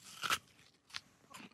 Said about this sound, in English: I've definitely tasted that apple before. Describe it. Very sweet. Okay. And crunchy and really good.